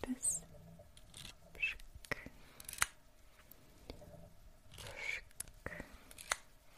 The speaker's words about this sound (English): And I'm going to use my little eco-friendly hairspray. Okay. And I'll just spray it.